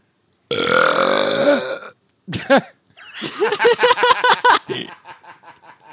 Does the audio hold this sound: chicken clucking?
no